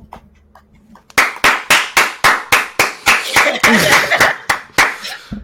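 After a quiet second, a single person claps loudly in a steady, even rhythm, about a dozen sharp claps, with a brief voice murmuring underneath partway through.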